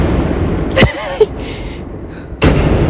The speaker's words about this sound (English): That is the car door shutting. I'm gonna leave these sounds in here because literally, what the fuck? Why are these so loud? No, just the echo. No, I have a truck, not a car.